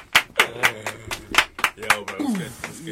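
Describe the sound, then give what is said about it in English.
A man claps himself onto a stage in a steady rhythm as he is welcomed, about a dozen sharp, bright claps over a few seconds, while voices talk and laugh underneath. “Man's clapping himself on.”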